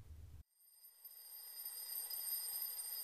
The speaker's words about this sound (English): Will's alarm chimed eagerly, alerting him that the new day had begun. It was time to rise and shine.